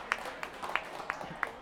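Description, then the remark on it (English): An audience of about 200 people applauds, a soft wash of clapping with a few sharper claps standing out at a steady, even pace, five in under two seconds. “My best friend, she's just got a round of applause from about 200 strangers.”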